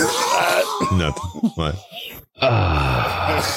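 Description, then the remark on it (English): A man's voice mimics the screaming lady from Austin Powers, letting out strained, wavering wails in a few bursts with a brief pause between them, plus a couple of short spoken words. “You know, it's exactly a lady that screams.”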